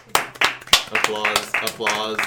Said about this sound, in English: Applause.